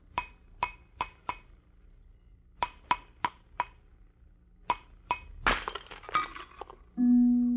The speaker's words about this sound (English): The glass you just heard broken was not ordinary glass. It was a closed vessel of exact contour of the man's head which it held. It was raised exactly 1 millimeter above the skin, all around, and above the hair.